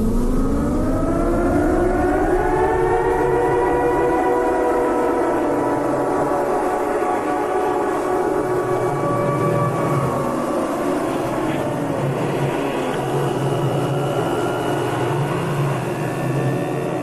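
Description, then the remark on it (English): An eerie, droning video game siren wails without pause, its layered tones slowly bending and rising in pitch, loud and steady throughout with no voices. “One of the better ways to illustrate this is by playing the siren.”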